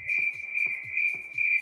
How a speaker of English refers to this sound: You can hear them crickets in there when we're about to read a verdict.